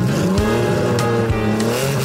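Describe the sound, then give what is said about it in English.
A car engine hums steadily and rises slightly in pitch as the vehicle pulls away through Frankie's Big Span Car Wash, with a few faint clicks and thumps over the constant drone and no talking. “Sure, that'd be $20. Drive on through.”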